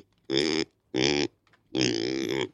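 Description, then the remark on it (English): A pig, Wondrous the Party Pig, grunts three times at the gate of Alameda Maker Farm in Alameda, an island in the San Francisco Bay: two short, throaty grunts followed by a longer, drawn-out one, loud and clear with brief pauses between and no talking. “In Alameda, an island in the San Francisco Bay, we are met at the gate by a pig.”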